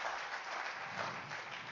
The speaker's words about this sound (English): You guys want to clap for that? That's amazing for Jesus. Yeah, come on.